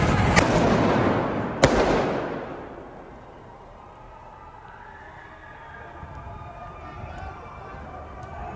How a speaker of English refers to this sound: This is Antifa burning a building, setting off explosions, fire smashing glass windows and doors in Atlanta.